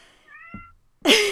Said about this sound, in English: Your cat also wishes to contribute to this conversation.